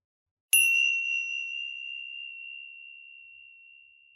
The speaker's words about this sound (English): We'll make a start using some chimes to begin.